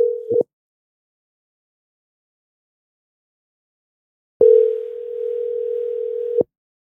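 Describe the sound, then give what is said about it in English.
An outgoing phone call's ringback tone while calling a person: a steady, single-pitched electronic hum cuts off after a brief snippet, then after a long silent pause rings again for about two seconds. Clear, no voices. “I thought you said it wasn't going through.”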